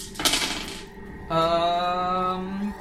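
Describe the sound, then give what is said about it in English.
A short rattling clatter of eight dice being rolled across a table for under a second, then a steady hummed tone holds for over a second afterward. “Shambling legs, then, because that is 8 dice as opposed to 4.”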